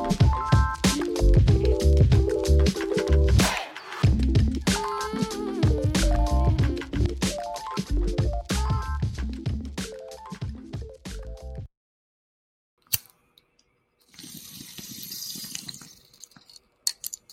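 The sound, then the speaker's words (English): Wine glugs and splashes as it is poured into a glass, steady for about ten seconds, then a short pause before a softer, hissy trickle. No one talks. “Pour some wine, light a joint, or don't, and meet my mutual.”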